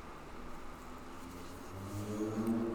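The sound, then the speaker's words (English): A truck engine rumbles steadily outside, growing louder toward the end as it drives past, with a low droning hum and rising tone. “see, that's probably a gangbanger truck right there,”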